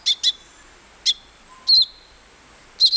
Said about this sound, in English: But a tiny songbird in South America called the thick-billed euphonia does employ what scientists call deceitful mimicry, a very rare trait among birds.